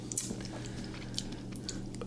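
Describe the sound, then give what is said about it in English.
A man sips coffee, a few soft wet slurps and mouth clicks scattered over a low, steady background hum, with no talking. “You know, take a sip and see what you think. Smells like gas station coffee.”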